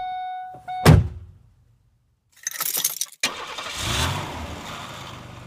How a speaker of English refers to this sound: So, but without further ado, let's go ahead and get in this car and get this motherfucker started. I mean, I gotta find my keys and we're gonna get this going.